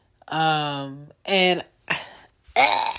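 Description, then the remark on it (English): A girl who is sick makes a few loud, strained vocal bursts, including a harsh, rough cough, each separated by short pauses, with no one talking over them. “She's sick. She got snot. She coughing.”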